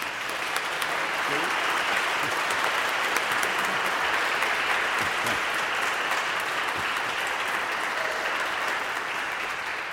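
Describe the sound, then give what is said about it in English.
The Marsh Chapel audience applauds in a steady, dense wash of clapping that holds at an even loudness for the full ten seconds, with no voices rising above it. “She couldn't hear your response, so I'd like you to give her a warm Marsh Chapel round of applause.”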